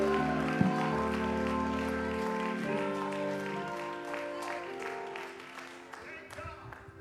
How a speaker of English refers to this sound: Let's clap our hands unto the Lord and shout unto him with a voice of triumph.